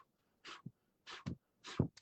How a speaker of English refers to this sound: Take a piece of paper and try to blow it. And it won't move. But if I do this, bro, look.